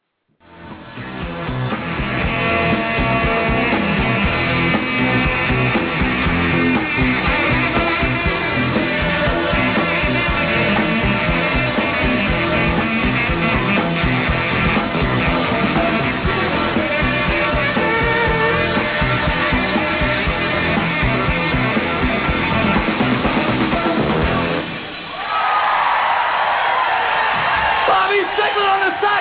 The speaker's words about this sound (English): Did y'all hear the intro song? Did you hear it was just 30 seconds.